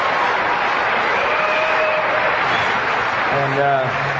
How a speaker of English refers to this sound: We ought to congratulate them with a good hearty round of applause.